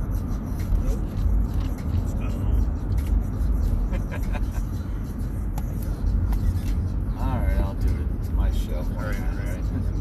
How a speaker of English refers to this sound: today we are recording at the car. That's right, we are on the road home. We are coming to you from the enclave. Late night. Returning home from Cincinnati,